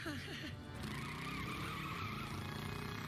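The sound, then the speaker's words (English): A stolen van's engine roars as it speeds away, tires skidding and squealing loudly and continuously for a few seconds, intense. “That boy boy's stealing the van. I mean, that bird car thingy.”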